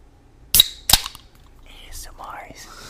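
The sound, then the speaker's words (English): A can of watermelon-flavored prebiotic soda cracks open: two sharp, loud snaps a moment apart, followed by a soft, steady fizzing hiss of carbonation. “Get the live crack.”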